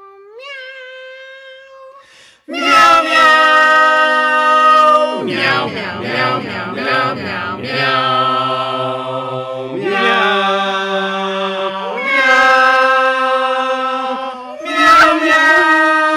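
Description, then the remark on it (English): A cat choir's meows are arranged into a tune from 2001: A Space Odyssey, from the choir's 1992 album. After a soft, thin opening note, loud layered meows hold long, stacked pitches that shift step by step in a slow, swelling melody. “Meow, that's what I call music.”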